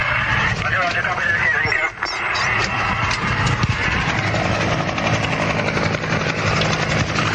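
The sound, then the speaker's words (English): A helicopter hovers about 50 feet overhead at the end of an airport runway during a rescue, as fire appliances pull up, its loud, steady rotor roar and whine filling the whole recording without pause, with indistinct voices faintly mixed underneath. “You can hear the helicopter.”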